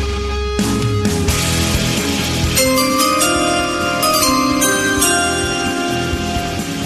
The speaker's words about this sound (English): What are those chimes, Jonathan? What are those chimes? Are those draft chimes you play?